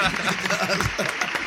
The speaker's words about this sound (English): Listen, that's what we need here. Hold on a second. Exactly. Let's get that man applause.